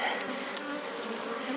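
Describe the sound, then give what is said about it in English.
A steady, dense drone of many honeybees buzzing together in an open hive during an inspection of the brood box, a continuous low hum with a shimmering texture and no speech over it. “How many bees would there be in a hive?”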